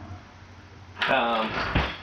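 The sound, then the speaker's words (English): After a brief quiet stretch, a kitchen drawer slides open with a scrape, followed by clattering and rattling as its contents are rummaged through. “if you go to this drawer furthest from me on that side. One more. There you go. Should be somewhere in there.”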